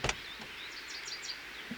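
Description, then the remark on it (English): A truck door unlatches with one sharp click, followed by a few faint, high squeaking chirps as it swings open, opened from the outside by a hand reaching out of the window. The sound is quiet, with no one talking. “Put your hand out of the window and open the door from the outside.”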